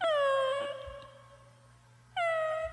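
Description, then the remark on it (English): A cat meows plaintively twice: a long, drawn-out wail that slowly falls in pitch and fades, then a second cry starting loudly, with no talking. “Wow, sounds like a little kitty needs some help.”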